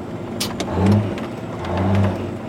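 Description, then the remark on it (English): A heavy truck engine, one of three trucks run by a small trucking business, revs up twice in quick succession, its low rumble rising and falling loudly, with no voices present. “owns this truck and two others with his Red Road trucking business.”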